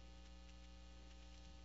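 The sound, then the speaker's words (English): A steady electrical mains hum drones continuously from a sound system during a Bible study talk, with strong low buzzing harmonics and faint static hiss on top, no voices present. “We got a major hum up here.”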